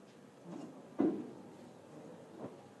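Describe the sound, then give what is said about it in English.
A door clunks shut with a sharp knock, framed by softer handle and latch noises before and after, as someone goes out and comes in again through the door; no talking. “The Holy Spirit is telling me to just go out, professor, and then come in again through the door.”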